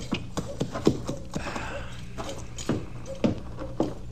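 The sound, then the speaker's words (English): A horse's hooves clip-clop at an unhurried walking pace as it is taken around to the livery stable, a string of sharp hollow knocks over a steady low background hiss, with no talking. “You take my horse on around to the livery stable, will you, Chester?”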